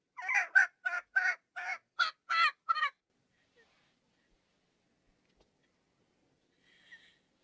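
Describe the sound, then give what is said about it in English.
A chicken squawks loudly in a quick run of about eight harsh calls over a few seconds, followed by near silence and one faint, brief call near the end. “Keep that damn chicken quiet.”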